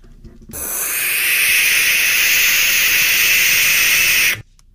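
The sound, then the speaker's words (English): A barn owl lets out one long, harsh, hissing screech lasting about four seconds, loud, high-pitched and steady from start to abrupt finish, with no voices present. “That's an owl. It's an owl sound.”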